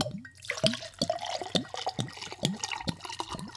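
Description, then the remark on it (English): Sherry being poured into a cup, filled to the top, a steady gurgling trickle with repeated glugging splashes over a few seconds, no voices. “we're having sherry. So get out your cup. I've got mine. Here we go. Pour it to the top.”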